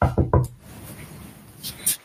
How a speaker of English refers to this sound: As I walk into the meeting door with the producer, knock, knock, knock.